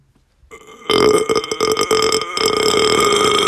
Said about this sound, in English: Big burp for the boys.